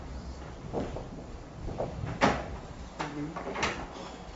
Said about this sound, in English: Just open the door downstairs here, you go down.